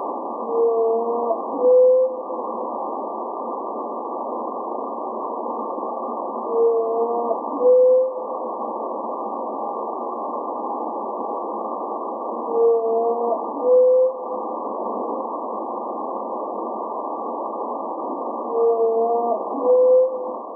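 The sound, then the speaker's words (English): Whale song sped up 20 times, recorded by underwater microphones in the ocean: four short bursts of rising, howl-like tones repeat about every six seconds over a steady, muffled underwater hiss, with no voices present. “Here's a listen to the new whale song, sped up 20 times so that it's more audible to human ears.”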